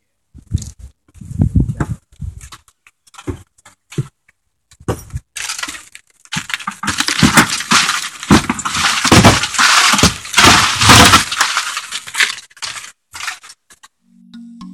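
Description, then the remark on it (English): Footsteps in boots crunch over a lot of broken glass, the sharp grinding and clinking growing denser and louder midway, with scattered brittle crackles and no voices. “why I wear boots when I come out here. Know what you're gonna do. Yeah, there's a lot of glass.”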